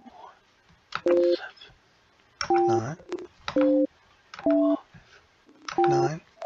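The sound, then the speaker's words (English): Five separate two-tone telephone beeps, like keypad dialing or a busy signal, sound clearly about a second apart as someone tries and fails to make a phone call. Each beep overlaps bursts of voice or handling noise. “Why can't I make a phone call? I gotta call him again.”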